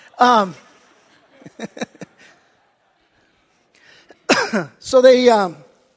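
A person chokes on a cough drop and coughs, with a loud burst, a few short sputtering catches, then two harsh throat-clearing coughs in quick succession.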